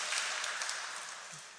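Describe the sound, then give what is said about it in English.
A steady wash of applause given to thank a man for his work: many hands clapping into a dense, crackling roar that tapers slightly toward the end, with no voices over it. “He does not do it for the applause, but we can give it to him anyway.”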